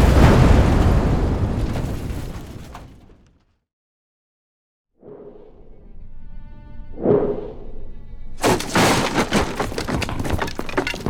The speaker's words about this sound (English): Why have you crashed your way into my home?